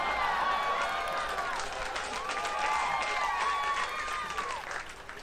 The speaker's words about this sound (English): Yeah. Clap for that.